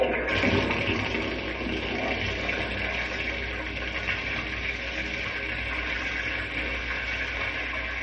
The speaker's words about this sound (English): Now I'll turn on the water so it can run through the pipes over the model. Watch the topsoil wash away.